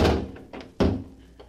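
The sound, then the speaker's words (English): A heavy office vault door swings shut with a deep, solid thunk, followed by a second resonant bang and a faint metallic click as it settles, with no talking. “Now to close the door.”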